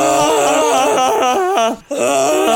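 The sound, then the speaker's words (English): A voice imitates a Wookiee growl from Star Wars: a loud, warbling, moaning vocal roar with wavering pitch, briefly breaking off near the end before resuming. “I realized when we were watching Star Wars, I can't do a Wookiee noise.”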